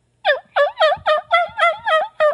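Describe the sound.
A person imitates an agitated turkey hen, belting out seven rapid, loud yelps in a steady rhythm, with no talking in between.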